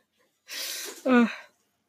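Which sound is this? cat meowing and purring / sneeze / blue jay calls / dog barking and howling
sneeze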